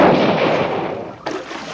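A loud rifle gunshot booms and rolls off into a decaying rumble, followed about a second later by a second sharp crack. No one speaks.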